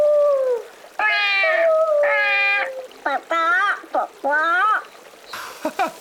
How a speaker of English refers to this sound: Those sound like very interesting birds. Yeah, what kind are they, computer? A vulture, chicken, and an owl.